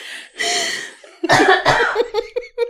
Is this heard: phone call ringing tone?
no